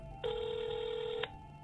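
A single ringing tone heard down a phone line while calling the South London Press newspaper: one steady, mid-pitched buzzy burst lasting about a second, stopping abruptly, with no one talking.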